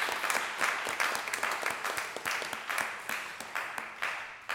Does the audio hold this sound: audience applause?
yes